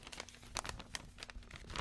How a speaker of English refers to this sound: This next one is from Richard in Liverpool. Let me open this envelope.